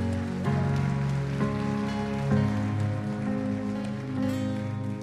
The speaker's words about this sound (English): Would y'all give their family and friends a big round of applause?